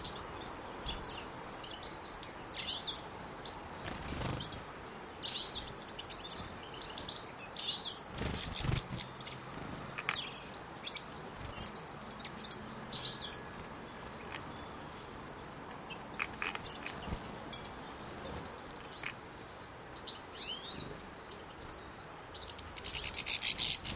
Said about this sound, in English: Goldfinches. That was a goldfinch chasing off a chaffinch. There's goldfinches singing in the bush nearby.